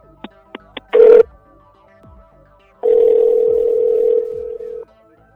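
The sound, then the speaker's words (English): An outgoing phone call: three quick dialing blips, then a short ring tone and a longer steady ringback tone about two seconds long, clear with no voices. “I wasn't sure you were going to answer the phone.”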